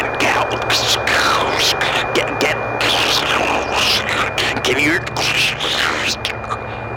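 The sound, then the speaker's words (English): Crackling static on a phone call that is breaking up fills the whole stretch, choppy bursts of hiss cutting in and out over a steady low hum and a thin whine, with garbled voice fragments breaking through the noise. “Sorry, you're breaking up a little bit.”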